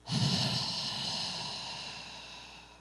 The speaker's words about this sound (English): how to really take a deep breath. I did not know that that was a thing. I didn't realize that I had been breathing wrong like my whole life, right?